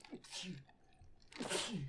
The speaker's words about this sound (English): Bless you, sir. May God be with you.